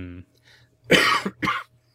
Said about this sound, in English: Oh, there's me coughing again.